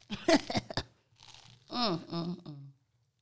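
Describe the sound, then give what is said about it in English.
Loud crunching and chewing of food in quick bursts in the morning, followed by a short stretch of softer mouth noise and a brief voiced murmur before it goes quiet. “over here crunching.”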